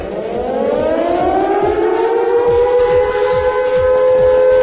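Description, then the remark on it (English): A loud wailing alarm siren rises steadily in pitch, its layered tones sliding upward and holding, with a rhythmic low pulsing beneath. No one speaks. “Anyway, time to move on and to sound the alarm.”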